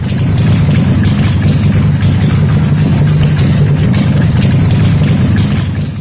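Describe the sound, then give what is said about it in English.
A Harley-Davidson motorcycle engine idles, a loud, steady low rumble with a rapid uneven throb that holds constant for several seconds, with no voices. “He said, they said that the potato, potato, potato was the sound a Harley Davidson makes when it's idling.”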